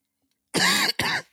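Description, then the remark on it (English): Two loud, harsh coughs in quick succession, with no talking around them. “Sorry, me coughing had me thinking of”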